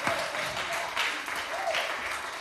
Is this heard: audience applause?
yes